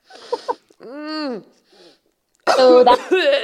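A person sniffs aromatic salts, a couple of quick sniffs and a strained, drawn-out vocal groan, followed by a burst of loud, harsh coughing and sputtering after sticking their face too close to the salts.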